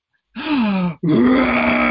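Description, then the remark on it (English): A child's voice growls like a tiger in two drawn-out, throaty bursts separated by a brief pause, loud, with no other talking. “It's a tiger?”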